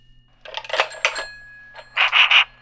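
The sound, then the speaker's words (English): An old-fashioned telephone bell rings in two bright, jangling bursts, the second breaking into three quick pulses, loud against a faint low hum with no voices. “Yeah, it's ringing a long time. Is this the right number”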